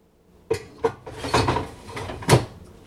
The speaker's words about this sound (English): All right, I'm going to place the basket back in to the fryer.